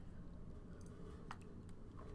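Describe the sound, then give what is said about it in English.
A quiet sip of hot coffee early in the morning: a few small wet slurping and mouth clicks over a low, steady background rumble, with no talking. “I'm just gonna have a little sip of coffee.”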